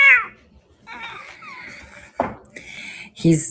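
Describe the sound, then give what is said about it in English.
A cat meows several times, with drawn-out, wavering cries and a few sharper bursts, amid some soft background clatter. “I don't know what's wrong with that cat.”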